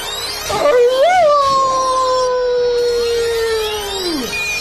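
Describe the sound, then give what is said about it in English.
A dog gives a single loud, drawn-out howl in pain as the tip of its tail stings: it jumps up sharply, holds a long wavering pitch for about three seconds, then sags downward and fades out, alone. “I howled.”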